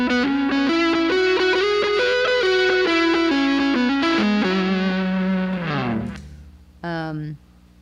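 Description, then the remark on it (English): A distorted electric guitar played through a Boss DD500 delay pedal plays a melodic run with a quick slapback echo doubling each note, then rings out and decays; a short final note repeats after a brief pause. “So I've got a slap, like a longer slap, and then a super long slap.”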